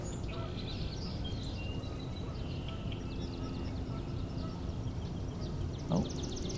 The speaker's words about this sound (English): Ducks flying by.